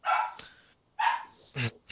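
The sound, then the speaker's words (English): A dog barks loudly while being fed: a couple of sharp, drawn-out barks followed by a shorter yip, with brief pauses between them and no one talking. “And my dog's being fed.”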